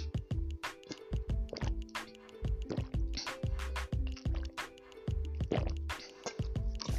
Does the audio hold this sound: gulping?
yes